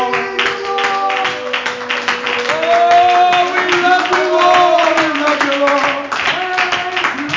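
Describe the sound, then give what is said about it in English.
An audience at a worship service claps hands in a steady, rhythmic beat, the sharp slaps repeating evenly for several seconds over sustained musical tones and voices underneath. “Come on, clap your hands one more time.”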